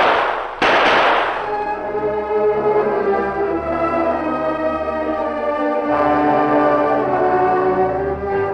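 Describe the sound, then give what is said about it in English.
Three loud gunshots, fired by the Lone Ranger, crack out in quick succession at the start, then give way to a long, sustained ringing tone that slowly fades, with no voices. “I'll fire three now, three more later, and pray that someone's near enough to hear.”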